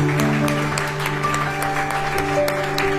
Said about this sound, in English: They're reflecting the heart of our Father. And we're not just clapping for them.